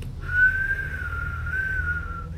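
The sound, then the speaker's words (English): A little girl whistles a short, steady tune with gentle rises and dips in pitch, clear, over a low background rumble with no talking. “And it lands into a little girl. And she whistles.”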